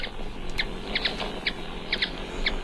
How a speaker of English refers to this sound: The sound of ruby-throated hummingbirds there.